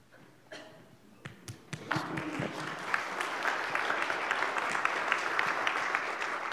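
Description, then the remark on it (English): A few scattered claps start off, then quickly swell into steady, sustained applause from a sizable crowd after a prayer ends, continuing at an even, moderate level to the end. “I like being the first one to start clapping.”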